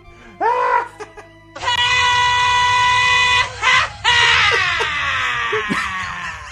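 A man lets out a short yell, then a long, loud, strained scream that breaks briefly and resumes, drawn out for several seconds with no talking; the scream is from the film Wayne's World 2.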